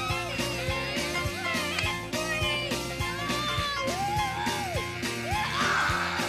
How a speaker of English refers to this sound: Oh, he's yelling, right?